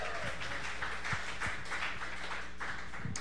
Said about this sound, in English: Live studio audience, you've been awesome. Please give yourselves another round of applause. Give the band a round of applause.